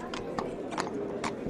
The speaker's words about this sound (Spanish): Ya tengo aquí los caballos, fresquititicos, descansados y bien comidos.